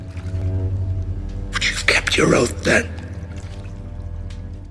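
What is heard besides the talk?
water splashing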